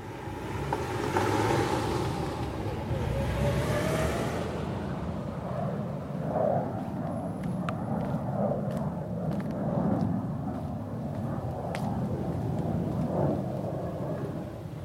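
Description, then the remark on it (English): A steady, fairly loud low rumble of road traffic heard from a backyard, swelling and easing as vehicles pass, with occasional faint clicks and no one talking. “I can't believe how loud the traffic and neighbours and aeroplanes are when I listen back.”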